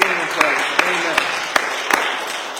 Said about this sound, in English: Everybody come on, let's give the Lord a hand clap.